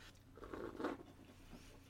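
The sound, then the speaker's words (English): A quiet slurping sip of a drink lasting under a second, a soft wet mouth sound over faint background hush, with no talking. “The sip.”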